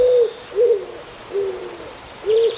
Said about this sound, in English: Oh, yes. Yes, that is a pigeon.